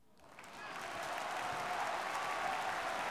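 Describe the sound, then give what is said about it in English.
A crowd breaks into applause that quickly swells to a dense, steady roar of clapping and holds at full strength, then stops suddenly, with no voices over it. “It's really awkward that they just stop clapping suddenly.”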